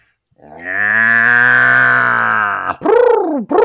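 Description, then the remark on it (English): A southern orange-eyed tree frog gives a loud, drawn-out moaning call lasting about two seconds, then two shorter swooping notes that rise and fall in pitch, with no other sounds. “That's a southern orange-eyed tree frog.”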